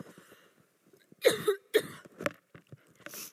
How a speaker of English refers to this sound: One moment. I want to cough, but then I know I'll be coughing into the microphone.